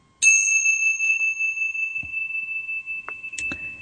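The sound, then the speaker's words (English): A single bright chime is struck to begin a show and rings out clearly, its pure tone sustaining and slowly fading over several seconds, with a few faint knocks and rustles underneath. “And with that connection, we will take a moment to have the chime and begin our show.”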